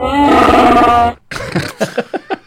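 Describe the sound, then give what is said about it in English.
A long, loud, rumbling burp lasting about a second with a rough, buzzing tone, followed by a quick series of short breathy bursts. “And he just burped.”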